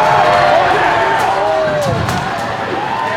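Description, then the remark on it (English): Several sharp thuds of rocks, thrown by people in a crowd, strike a Walgreens store window and ring out over the loud, restless crowd, with voices shouting and murmuring throughout. “People throwing rocks at the Walgreens window.”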